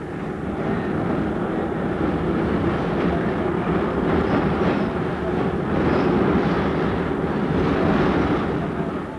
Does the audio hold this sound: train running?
yes